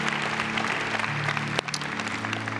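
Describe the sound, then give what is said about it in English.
A church audience claps together as a clap offering to the Lord, a dense, sustained burst of applause with a low sustained organ or keyboard tone underneath and no speech. “Let's give the Lord a clap offering.”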